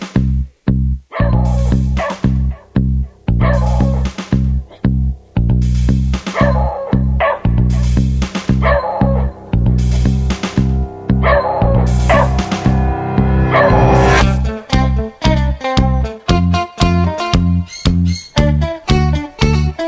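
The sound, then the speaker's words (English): A dog barks loudly, firing off a long, rapid string of sharp barks and yips with hardly a pause, continuing for the whole stretch with no one talking. “Boy, what are you barking at?”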